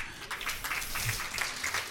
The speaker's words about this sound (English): You should be clapping